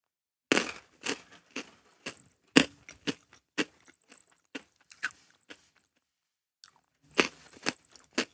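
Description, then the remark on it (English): Loud crunching of Whoppers milk-chocolate-covered malted milk balls, with a burst of sharp bites followed by quieter, steady chewing, a brief pause, then another round of crisp crunches. “For me, the Whopper crunch is always the selling point, but the problem is the chocolate's not on the same level.”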